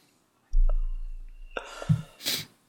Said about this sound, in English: Sneezing so much.